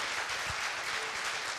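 A crowd applauds steadily, with many hands clapping at once into a dense, even wash of sound at a constant level and no individual claps standing out.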